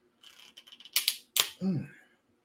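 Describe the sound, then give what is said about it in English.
A sparkling drink bottle is opened: a quick run of small plastic clicks as the cap twists, two sharp fizzy hisses of escaping gas, then a brief voiced exclamation. “I guess I can open up my sparkling. I just hope it don't spray all over the damn place.”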